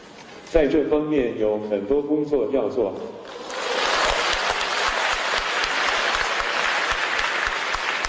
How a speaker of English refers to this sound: Well, that was at a machine learning conference in China. It's not often, actually, at academic conferences that you do hear spontaneous applause.